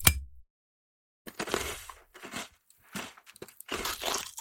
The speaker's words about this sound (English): Do you hear that? Hear what? Like crunching. Oh, that. I was just cracking my toes. Now, will you please turn the light out? I'm trying to sleep. It was not toe cracking. That was food crunching.